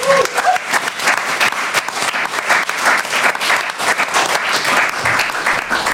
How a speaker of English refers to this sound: So a big round of applause for …, everyone.